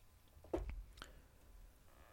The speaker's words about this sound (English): So, pardon me while I take a drink real quick. That's good shit.